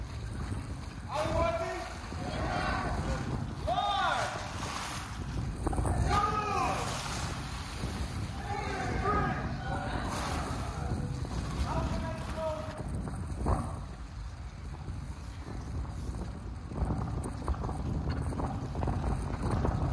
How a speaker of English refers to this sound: And we got out on a fishing boat out onto the Sea of Galilee. And one of the local fishermen showed all of us on the boat how they used to do it back in Peter's day. I got a little video of it.